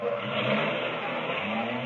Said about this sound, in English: Hey, Costello, is there another car driving in? Hurry up. See what they want.